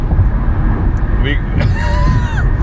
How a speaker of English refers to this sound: Are we on a racetrack or, like, is it the fucking highway? Dude. We've, like, and there's a decent amount of traffic. They're, like, zooming through, like, weaving in and out.